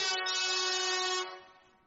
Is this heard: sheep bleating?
no